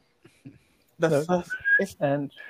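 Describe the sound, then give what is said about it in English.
A brief, thin attempt at whistling produces a faint, wavering tone, mixed with breathy vocal sounds and a few soft clicks. “I can't whistle.”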